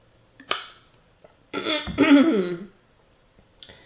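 A person drinks a glass of water up close: a brief click, then about a second of gulping and throat-clearing noise, followed by quiet with no talking.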